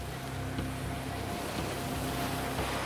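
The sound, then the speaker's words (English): A steady, droning boat engine hums low and constant over a wash of water and wind noise, holding an even loudness throughout with no voices present. “Boats that hunt till dusk.”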